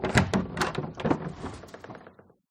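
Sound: door opening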